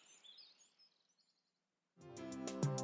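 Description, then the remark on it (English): Young golden eagles calling with faint, thin, high-pitched chirps and whistles over soft background noise, fading out before music begins abruptly near the end. “Young golden eagles.”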